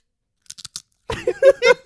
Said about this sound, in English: Damn, loud ass chewing and shit.